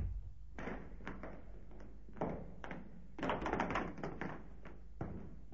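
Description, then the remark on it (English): A heavy wooden door leading down into a cellar as old as the house is worked open with a series of dull thunks and taps, followed by a stretch of rattling, scraping movement and a final knock. “Down here. Through this door.”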